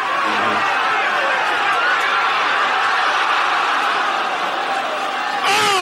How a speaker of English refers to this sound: It's like the crowd was so loud that the earth was shaking and the ball went in. Listen to how the crowd goes silent because they think the shot has ended.